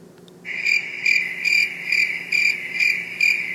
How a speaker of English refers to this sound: I don't hear anything but crickets